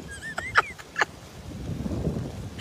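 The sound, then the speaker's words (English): Wind buffets the microphone in a low, rumbling roar that swells through the second half, after a few short, sharp bird calls near the start, on a cold, windy day in Florida. “Look how windy it is.”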